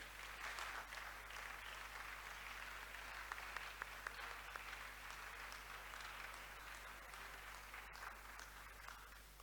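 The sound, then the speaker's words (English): An audience applauds steadily during a church service, dense overlapping clapping forming a continuous wash of sound for the whole stretch, with a low steady hum underneath and no voices standing out. The applause is for the newly introduced choir officers and part leaders. “we can now clap for them.”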